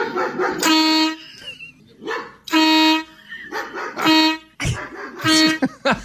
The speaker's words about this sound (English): A guy in California built a remote control air horn to blast every time his neighbor's dog barks. And here's a clip of it in action. Dog Zapper 2000. Have a look.